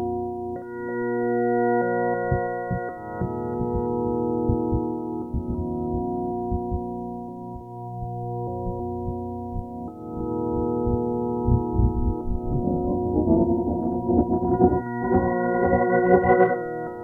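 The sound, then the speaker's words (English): A sustained synthetic tone, steady and harmonic, gradually layered with a flickering, stuttering texture from a granule sampler chopping the same sound into super tiny increments, growing busier and brighter toward the end; no one speaks. “I'm adding a little bit of granule in the background. So it's coming from the same sound, but it's chopping it up in super tiny increments.”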